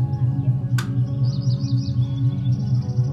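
Soft, high bird chirps trill steadily over a deep, pulsing drone of calm ambient meditation music, with one brief bright click early on and no talking.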